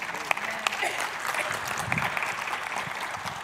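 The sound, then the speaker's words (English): An audience applauds in a steady wash of clapping, with a few sharper individual claps standing out above the dense, even patter. “That's okay to clap.”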